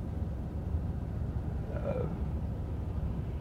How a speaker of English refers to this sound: I'm stuck here in traffic in a school zone.